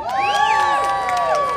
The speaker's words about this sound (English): I'll tell you what, give yourselves a nice round of applause out there.